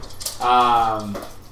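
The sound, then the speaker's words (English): A dog lets out a single drawn-out whine that holds steady for most of a second before sliding down in pitch, as dogs run around. Faint rattling and clatter sit around it. “We got some crazy dogs running down here.”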